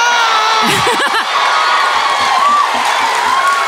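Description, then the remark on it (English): An audience claps and cheers loudly and steadily, with a few high rising whoops in the first second over a dense, continuous wash of crowd noise. “There's nothing that makes Irish people clap more than piercing an eye with a pin.”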